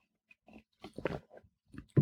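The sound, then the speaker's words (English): Sips of hot black tea: a few short, wet slurping and swallowing sounds in quick succession, quiet overall with one louder slurp at the end, no talking. “And I will start out here to take a sip of tea, black tea.”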